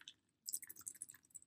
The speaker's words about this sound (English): You can do the ice sounds of your bottle moving.